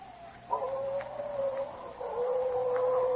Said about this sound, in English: Yeah, them slinking coyotes sound like banshees awaiting the night. Like as not, it's scalp hunting Sioux, which is worse.